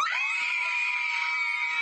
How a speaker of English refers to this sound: Why the screams?